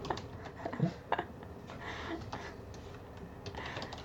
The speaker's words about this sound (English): You're going to hear the keyboard type.